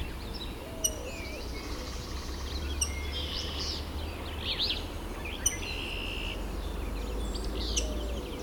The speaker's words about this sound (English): At least two willow flycatchers here.